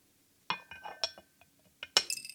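Ceramic teacups clink and tap against each other several times in quick, irregular succession, fairly crisp, with a faint watery slosh between the knocks and no voices, as hot water is poured into the teacups and tea kettle to warm them before preparing oolong tea.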